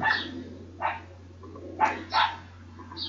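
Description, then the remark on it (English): Several short, sharp yaps from small puppies come in quick bursts, moderately loud, with a steady low hum running underneath. “Shh, puppies.”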